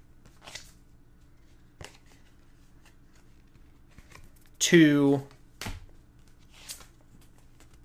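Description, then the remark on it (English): A deck of playing cards being handled: a short, loud flurry of riffling mid-clip, with scattered soft card taps and flicks around it and a single brief spoken word. “I promise I shuffled this. You guys heard me.”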